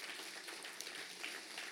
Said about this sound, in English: Come on, that deserves a hand clap, everybody. To God be the glory for that.